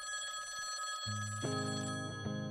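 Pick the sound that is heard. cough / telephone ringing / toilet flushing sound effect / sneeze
telephone ringing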